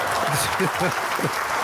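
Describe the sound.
Soft, steady golf clap from a small group, a continuous patter of polite clapping at an even level during a dice game, with a voice murmuring briefly over it.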